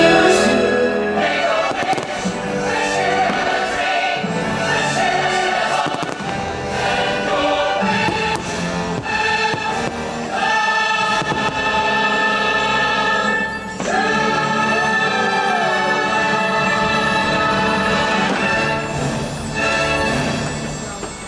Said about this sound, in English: All the little fireworks are going up. They're getting ready to go. People are already cheering. People are cheering.